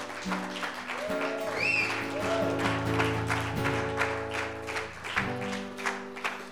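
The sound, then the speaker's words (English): A church audience claps steadily and densely for several seconds as a clap of praise to God, with sustained keyboard or organ chords playing underneath the applause. “And can we give our God a clap of praise, please?”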